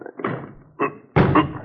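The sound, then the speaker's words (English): Several heavy thuds and bangs against a locked wooden door as people try to force it open, in uneven bursts with rattling in between, fairly loud. “We'll try to force it.”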